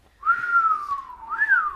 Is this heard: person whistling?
yes